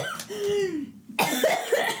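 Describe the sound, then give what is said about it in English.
A pet named Echo coughs, as she does whenever she does a double tap: a wheezy, whining tone leads into a sudden harsh cough burst, followed by short squeaky, rasping gasps. No one talks. “Her coughs whenever she does a double tap.”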